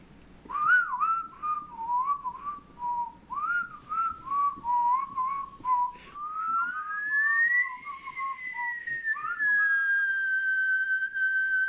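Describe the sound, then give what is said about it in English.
A person whistles loudly, first a bouncy string of short rising notes, then one long sustained tone that slides upward and holds steady to the end. “That's a loud whistle.”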